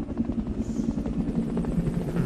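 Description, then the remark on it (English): A helicopter's steady, heavy rotor thrum fills the whole moment as it flies by, loud, with a low pulsing drone and no voices over it. “If I can time this just right, when the helicopter flies by, then they won't see me jump out the window.”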